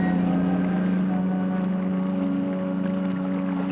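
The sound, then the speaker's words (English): A single ship's foghorn sounds in one long, unbroken blast as the ship disappears into the mist, a deep steady tone rich in overtones that holds loudly for the whole moment with no voices around it. “The ship disappearing into the mist, and then the lone foghorn.”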